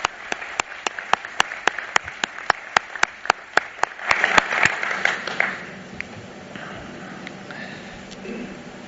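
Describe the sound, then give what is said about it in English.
Steady, evenly spaced sharp claps start things off, then a brief swell of fuller applause from a group at a company meeting, applauding departing board members, that quickly thins out and fades into a soft murmur. “And if you would help me, I would like to give these people a round of applause.”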